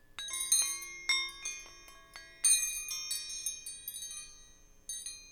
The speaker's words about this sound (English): Let us chime the wrenches.